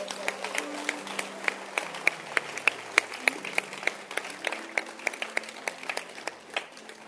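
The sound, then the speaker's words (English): An audience claps steadily for a woman honoured as a prophet receiving her reward, many sharp hand claps overlapping in a loose, uneven rhythm over a low murmur of voices, moderately loud throughout. “Clap your hands for her.”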